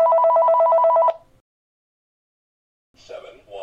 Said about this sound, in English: So now I'm going to show you what it sounds like when the phone rings and what the caller ID sounds like.